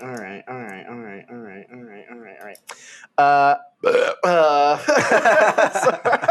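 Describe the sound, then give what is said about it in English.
A cartoon robot's burp plays from a soundboard, a loud, strongly pitched belch preceded by a series of short rhythmic voiced pulses and followed by gurgling, voice-like bursts, all prominent. “My Bender burp soundboard.”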